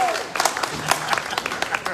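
An audience breaks into applause: many overlapping hand claps in a dense, irregular patter that holds steady at a moderate level for the full two seconds.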